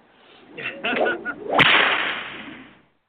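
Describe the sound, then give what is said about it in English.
A whip swishes through the air and snaps with a sharp, loud crack, followed by a brief airy rushing tail; a single strike, prominent with no talking. “Who said you could use my whip?”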